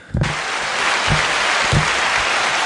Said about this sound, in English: That applause is for Eric.